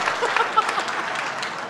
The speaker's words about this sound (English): By the way, can we just give a round of applause to this suit? It's beautiful. It's nicely tailored, too.